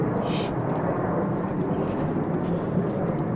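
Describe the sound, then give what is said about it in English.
A loud, steady roar of a military plane passing overhead, a dense low rumble that fills the whole stretch without letting up, with no speech over it. “Wow, that's a lot of noise. I think that's a military plane flying over.”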